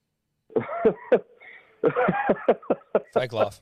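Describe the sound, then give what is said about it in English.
A person lets out a series of forced, put-on coughs, several short loud bursts in quick succession with brief pauses, the voice imitating a cough rather than truly coughing. “But if that's a fake cough.”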